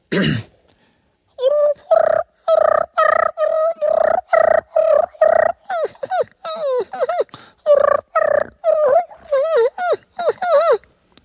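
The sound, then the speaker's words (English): A turkey fighting purr blown on a game call by a contestant in a calling contest: a fast string of loud, raspy, evenly spaced purring notes that shift into rolling, warbling trills, continuous for about ten seconds. “Contestant number one, can we please now hear your fighting purr?”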